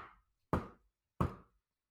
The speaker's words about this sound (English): One time, I was awoken by a knock on my door.